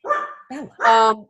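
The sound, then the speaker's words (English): A dog barks three times in quick succession, fairly loud, with short gaps between the barks and the last one longer and more drawn out. “I might have to grab the dog. I don't know why. The dog is misbehaving”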